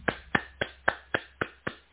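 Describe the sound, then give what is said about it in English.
Steady rhythmic applause for the Excellence in Equity Award winners: eight crisp, evenly spaced claps over two seconds, moderately loud with no voices or cheering audible. “The crowd goes wild.”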